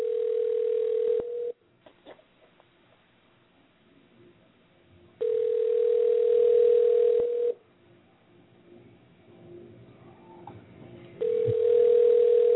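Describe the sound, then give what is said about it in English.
A telephone ringing tone repeats over the line during an outgoing phone call: three long, steady electronic buzzes separated by several seconds of quiet hiss. The tone is clear and fairly loud, and no one speaks. “So let's make this phone call real quick. We'll get our man on the phone.”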